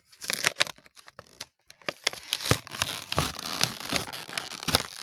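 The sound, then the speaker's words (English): The stiff plastic packaging of an ECW Series 1 Tommy Dreamer action figure crunches and crackles as it is pried open, a run of sharp, irregular crinkles and snaps lasting several seconds, fairly loud, with no voices. “You hear that? Crunch it.”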